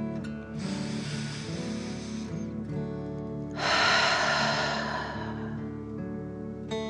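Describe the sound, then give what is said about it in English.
A deep breath drawn in through the nose, then a louder, forceful breath pushed out through the mouth as if breathing fire, in a breathing exercise, both clear over soft sustained background music. “Again, breathe in through your nose and out through your mouth, pretending you are breathing fire. Deep breath in and out.”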